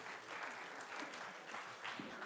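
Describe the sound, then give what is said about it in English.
A crowd applauds steadily, a dense wash of many hands clapping at even loudness for a couple of seconds, with no voices standing out. “The clap of envy.”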